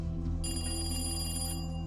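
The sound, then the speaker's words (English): A telephone bell rings in one sustained burst of about a second, bright and metallic over a low steady hum, with no voices. “But after a week with no progress, another phone call would break the case wide open.”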